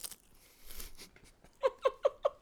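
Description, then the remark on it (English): A soft crinkly rustle, like a snack bag being handled, gives way to four loud, evenly spaced crunches of someone chewing Doritos chips. No one talks. “Do you hear that sweet crunchity crunch?”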